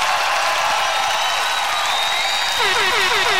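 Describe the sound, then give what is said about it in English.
A large stadium crowd cheers and applauds in a steady, dense roar that holds at the same loud level throughout, with a few warbling whoops rising out of it near the end. “Thank you to all my fans in the stadium. They love cheering you.”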